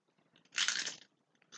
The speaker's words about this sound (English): Yeah, because now you're just munching sounds.